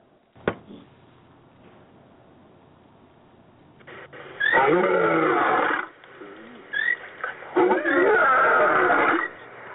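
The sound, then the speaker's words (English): Two loud, drawn-out roars like a big cat's, each lasting over a second, rising out of quiet background noise after a brief click near the start. “I want to close with our sacred roar.”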